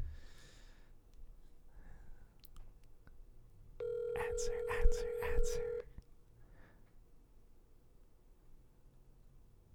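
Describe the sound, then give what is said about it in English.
A phone line rings out on an outgoing call to a relative, a steady electronic ringback tone lasting about two seconds, loud, with soft breathing and faint movement before and after. “I don't know if we should call.”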